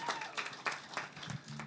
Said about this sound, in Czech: Děkujem kapele, na chvílinku se s váma rozloučíme, pak si vás zase pozvem. Jste úžasní. Zatleskajte prosím vás ještě kapele ….